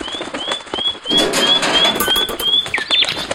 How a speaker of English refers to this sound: Yeah, here comes the bird. The bird's coming. There it is. Finally.